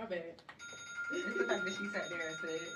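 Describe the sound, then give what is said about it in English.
A phone alarm rings with a steady, high electronic tone that starts shortly in and keeps going unbroken, while people talk loudly over it. “It's my alarm. It's not gonna cut off. I forgot I had an alarm.”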